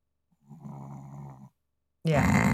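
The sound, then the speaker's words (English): A dog, Griffin, gives one drawn-out, rumbling snore lasting about a second, steady, followed by a brief pause before a loud voice abruptly starts talking. “I wonder if his snoring is picking up on the mic.”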